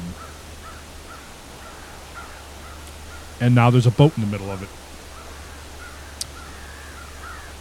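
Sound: birds calling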